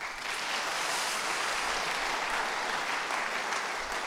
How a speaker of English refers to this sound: Cool, man. Round of applause.